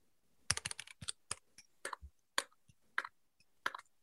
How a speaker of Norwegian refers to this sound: Jeg så det var noen på Facebook blant annet som etterlyste lydprøve av tastaturet.